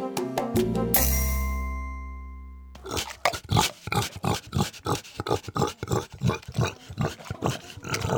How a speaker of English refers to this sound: Yes, there's nothing quite like the sound of a happy pig. This recording was taken several years ago atop the Pig Plateau, a wooded clearing in southern New Hampshire,